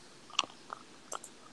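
Crunchy chewing with a few sharp bites, about three or four crisp crackles spaced irregularly over a quiet background, no voices.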